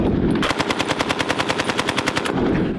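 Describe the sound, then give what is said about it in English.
A rapid burst of automatic rifle fire, about twenty sharp shots in a steady fast rhythm, loud, with no voices over it. “will we have a B-A-R on our pirate ship when we're hunting down oligarch yachts?”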